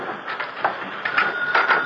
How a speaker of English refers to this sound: Yeah, sounds like the phone.